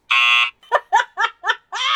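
A loud, harsh buzzer tone sounds for about half a second, followed by four quick, choppy bursts that resemble laughter, then the buzzer drones again at the end.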